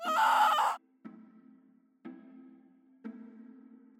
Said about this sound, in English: In the beginning, we came up with six different types of screams that we thought are quite typical for humans.